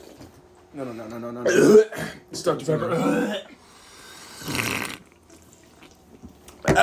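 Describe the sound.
A low, croaky burp after drinking soda rumbles out, followed by throaty gurgling noises and a brief raspy burst later, with a few short spoken words in between.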